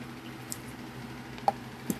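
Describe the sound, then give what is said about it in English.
Someone quietly sipping a drink: a few soft, wet clicks and a small gulp-like tick spaced across a low, steady background, with no talking. “One second, let me take a sip of...”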